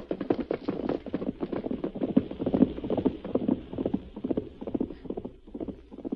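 Horses gallop straight into a valley in a steady, rapid drumming of hoofbeats that overlap into a continuous rumble, moderately loud and unbroken for several seconds, with no voices.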